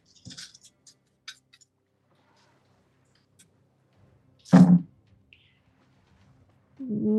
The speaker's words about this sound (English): So that is a 3 dice, for agility and 2 for marksman and 2 for the spear and an artifact type. So let's see this handful of dice that I'm rolling here.